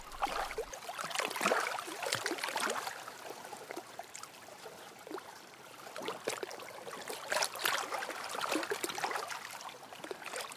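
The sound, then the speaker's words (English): Fast-flowing river water rushes and churns steadily, with a dense, complex texture of splashing and gurgling that swells and eases slightly throughout. No voices are heard. “Look at areas where the flow is clearly going to be fast, in which case I get very complex water textures, which I love, and then just let my ears guide me.”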